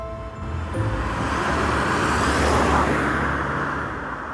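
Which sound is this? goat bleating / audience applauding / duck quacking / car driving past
car driving past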